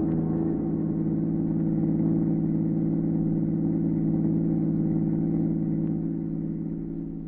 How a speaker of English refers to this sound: Watched the car as it pulled away.